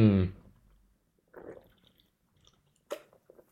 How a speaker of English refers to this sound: But geez, when you sit down to record on a warm spring afternoon, doesn't it feel great to have a delicious sip of Diet Coke?